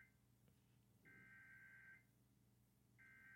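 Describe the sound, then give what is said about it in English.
A telephone rings in steady electronic bursts, one full ring about a second long followed by a pause and the start of another, clear and fairly loud over a low background hum. “What is that? What? Is that my phone?”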